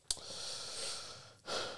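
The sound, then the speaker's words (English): A man breathes audibly: a sharp intake at the start, a long airy exhale, then another breath in. Soft and breathy, with no talking. “We know he's breathing.”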